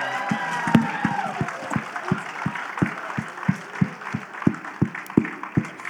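Audience applause with steady, rhythmic clapping, roughly three claps a second, over a dense bed of crowd noise and some raised voices or cheering.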